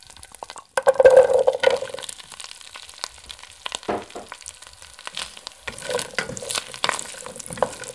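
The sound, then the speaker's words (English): Radishes sizzle loudly as they are added to 3 tablespoons of sizzling butter in a pan, a sudden crackling burst, then a steady fizz with intermittent scraping as they are stirred to coat. No one speaks. “Once that butter is nice and sizzling, just add the radishes.”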